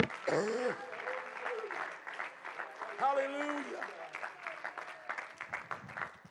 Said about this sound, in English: Come on, let's clap our hands unto the Lord today.